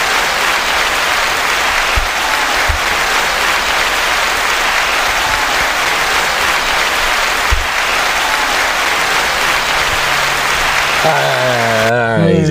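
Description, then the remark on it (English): Loud, dense applause from a crowd outdoors at a wedding roars steadily for about eleven seconds, a continuous hiss of many clapping hands, before a voice starts speaking as it fades at the end. “By a round of applause. Did he do a good job?”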